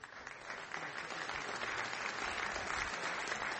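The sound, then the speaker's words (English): Steady audience applause fills the whole stretch, a dense wash of many hands clapping at an even, sustained level without any voices breaking through. “Speaking of applause, there will be a couple of times when I will artificially take a break for the radio broadcast.”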